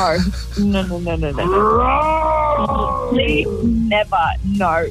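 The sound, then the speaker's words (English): A person voices a playful tiger-like rumble, a drawn-out growling tone that rises and falls over a couple of seconds, with shorter vocal bursts before and after. “Head down with a light tiger rumble, a light tiger rumble, and then pounce onto the bed.”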